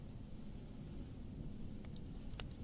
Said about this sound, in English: The sound effect of a campfire isn't perhaps the most appropriate thing to play there, so stop there.